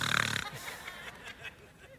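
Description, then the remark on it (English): A voice imitates a loud snore: one short, rough, rattling snort lasting about half a second, followed by quiet background noise. “Some of you were breathing really loud, right?”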